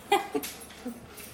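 dog whimpering

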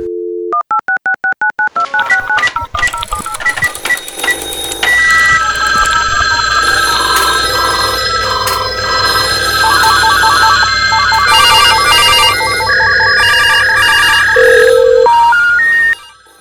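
telephone dialing and ringing

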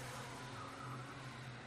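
car driving off

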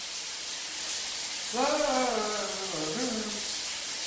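running shower water

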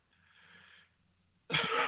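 cough

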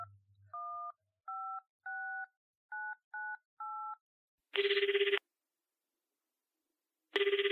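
telephone keypad dialing tones

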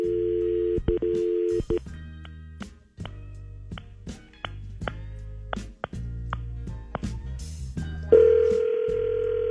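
telephone dialing tones

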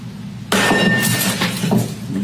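objects being smashed

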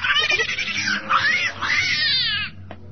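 cat yowling

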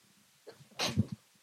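sneeze

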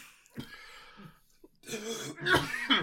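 coughing and throat clearing

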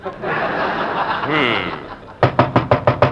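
knocking on a door

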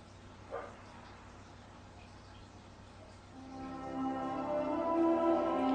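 dog barking

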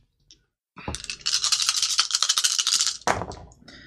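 dice being rolled

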